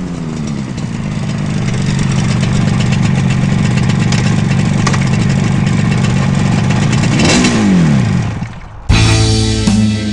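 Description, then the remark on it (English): A small 250cc modified classic gas motorcycle engine, raced at the Bonneville salt flats to a record top speed of 81.5 mph, revs loudly and steadily, its pitch swooping down near the end before it cuts off abruptly into a different, sustained tonal sound. “he sent me a picture of a little slip of paper documenting his top speed and new record for a 250cc modified classic gas motorcycle, 81.5 miles an hour.”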